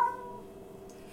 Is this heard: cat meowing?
yes